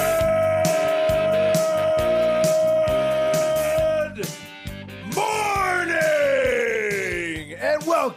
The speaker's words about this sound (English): Whoa. Screamed my throat out there for a second.